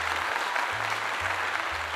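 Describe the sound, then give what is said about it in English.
An applause sound effect: a sustained burst of dense applause, steady and fairly loud throughout, with a low pulsing thump repeating about twice a second underneath. No one speaks. “Cue that applause!”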